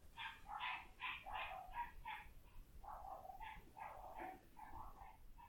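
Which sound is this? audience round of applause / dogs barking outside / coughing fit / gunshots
dogs barking outside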